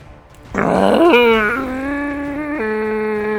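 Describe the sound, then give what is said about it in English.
A voice imitates a bear howling in pain as it takes necrotic damage: a rough, growling burst that turns into a long, loud, wavering howl held for a few seconds, alone. “It howls as it takes 20 necrotic damage.”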